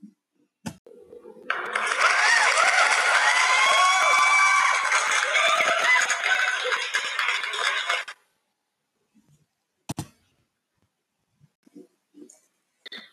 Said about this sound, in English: And applause.